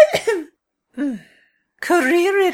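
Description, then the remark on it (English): Fairly loud coughing and throat clearing: a rough burst at the start, then two voiced, drawn-out throat-clearing sounds separated by short pauses. “Are you quite sure you would not like a cough drop, Dolores?”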